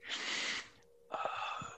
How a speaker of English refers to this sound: I'm sorry if you can hear my breathing.